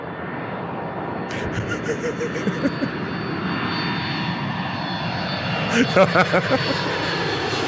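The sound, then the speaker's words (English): A steady airplane engine drones throughout, a broad continuous roar with rising intensity near the end, where several short bursts of voices or clatter cut through. “staff nice and calm and tell her you're bringing the plane into land.”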